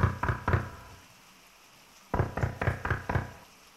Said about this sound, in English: Is that the front door? Who could be at the door in a storm like this?